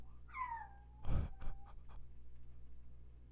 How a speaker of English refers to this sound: I fucking love it when my dog does that. Oh, if you guys heard that. That bull was dreaming. Oh, that was so cute.